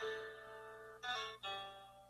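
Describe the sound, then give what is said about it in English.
A phone ringtone plays as a steady electronic melody of layered, buzzy tones, briefly swelling brighter and louder in the middle before settling back, with no voices. “Was that my phone?”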